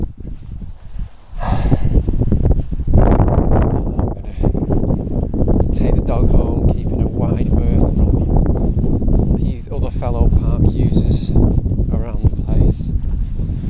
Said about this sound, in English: It's getting windy now.